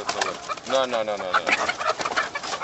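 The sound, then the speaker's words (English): A dense, overlapping chorus of about 9,000 caged hens, stacked in six rows of cages along a narrow aisle about 100 yards long, clucking and squawking at once, loud, with constant busy chatter and no pauses. “Walking down a narrow aisle about 100 yards long, we're surrounded by 9,000 hens stacked in six rows of cages.”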